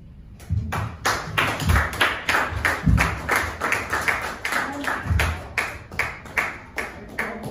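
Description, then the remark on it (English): An audience breaks into steady applause, many hands clapping in a dense, rhythmic patter that holds fairly loud throughout, with a few low thumps underneath. “Okay, I thought I would get a round of applause for that, but good night.”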